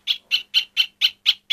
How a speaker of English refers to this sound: Another bird popular in these parts, the great spotted woodpecker.